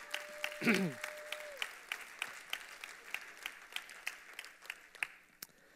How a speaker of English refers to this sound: It's church, and it's 11 o'clock. Yeah, clap.